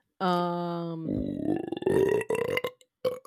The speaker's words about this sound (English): Hey, got a little bit of a burp.